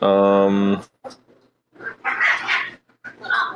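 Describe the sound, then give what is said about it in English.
Small Chiweenie dogs whimper: a sustained, high, tonal whine opens, followed by several shorter, rougher yelping sounds, with a voice faintly mixed in. “Do you hear my dogs in the background?”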